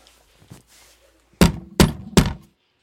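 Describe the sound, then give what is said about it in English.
A sea captain, Captain Van Tock, knocks on a door: three loud, firm knocks in a steady, evenly spaced rhythm, preceded by a few faint soft sounds and followed by quiet. “That day, when Captain Van Tock knocked on the door.”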